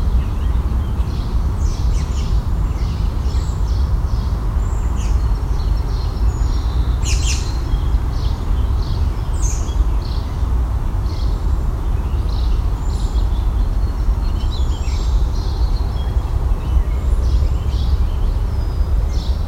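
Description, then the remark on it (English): A mixed songbird chorus of cedar waxwing, house sparrow, warbling vireo, song sparrow and American robin: many thin chirps, squeaks and short warbles overlap continuously over a steady low outdoor rumble. “A mix of cedar waxwing, house sparrow, warbling vireo, song sparrow, American robin.”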